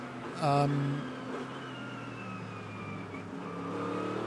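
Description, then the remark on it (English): A Proton Porsche race car's engine screams past, loud and high-pitched, its tone sliding downward as it goes by, with steady trackside rumble underneath. “That's the Proton Porsche.”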